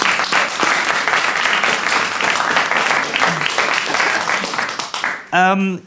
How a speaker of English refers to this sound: 13 points. Give him a round of applause, everybody.